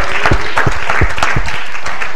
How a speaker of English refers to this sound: Let's clap to him for a minute.